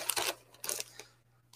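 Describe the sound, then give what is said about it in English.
Gift wrapping paper being unwrapped: a few short, crisp bursts of crinkling and rustling paper with brief pauses between them, and no voices. “Jared, open the damn gift.”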